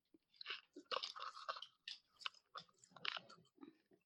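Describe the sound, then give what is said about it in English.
Grape popping candy crackles and snaps in a rapid, irregular flurry of tiny bright pops mixed with wet chewing, steady for several seconds with no talking over it. “There's a lot of popping sound happening here.”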